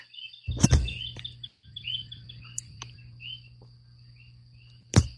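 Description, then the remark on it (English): Several birds chirp and call in short, scattered phrases at sunrise in a rainforest, joining in over a steady hum of frogs, with a couple of sharp clicks or knocks breaking through. “The birds here are beginning to join in with the frogs.”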